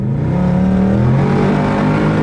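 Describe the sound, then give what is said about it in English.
A Mustang GT's engine drones loud from inside the car as it drives at about 100 km/h with the radio and air conditioning on, a deep steady rumble with slight rises in pitch as it revs, continuous throughout and with no talking. “we're having a conversation at 100 clicks in a Mustang GT and the radio's on”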